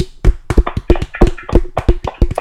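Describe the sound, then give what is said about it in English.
A short round of applause for Eddie Guerrero: a dozen or so sharp, crisp hand claps in a quick, slightly uneven rhythm, fairly loud, with no talking over them. “We can have a round of applause for Eddie if you want to give one.”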